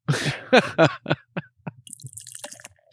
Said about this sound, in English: That's you pouring your money down the drain on that cognac.